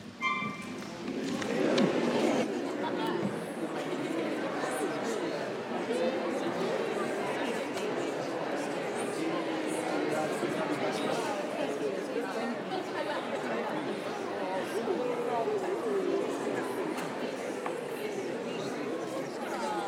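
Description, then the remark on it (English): A large crowd of people chatting all at once, a steady dense murmur of overlapping voices as a church audience greets one another during a service, with occasional soft thumps and footsteps underneath. “Now, let's greet one another.”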